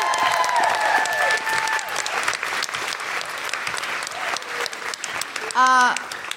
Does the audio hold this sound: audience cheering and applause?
yes